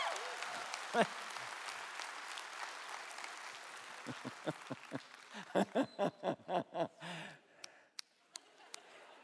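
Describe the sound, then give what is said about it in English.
An audience applauds in a dense wash of clapping that thins into a short run of loud, rhythmic unison claps, then trails off into a few scattered single claps. “I tell you what, if we're gonna applaud, let's give it everything we got, right?”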